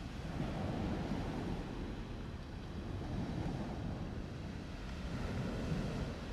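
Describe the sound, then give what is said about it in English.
Steady ocean surf rolls and washes continuously, a broad low roar of waves with some wind rumble, constant throughout, with no voices. “I'll never be as powerful as the ocean or as important as the ocean, but I know for a fact that the ocean definitely felt my words because of the way that the tide started to move.”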